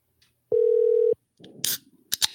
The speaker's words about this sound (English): Okay, it's ringing. It's working.